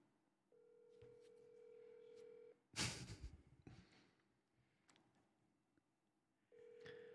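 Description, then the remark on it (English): An outgoing call's ringback tone: a steady, moderately loud buzzing ring lasting about two seconds, a brief burst of rustling noise, then a quiet pause before the next ring starts. “I'm about to call right now. All right, here we go. It's ringing.”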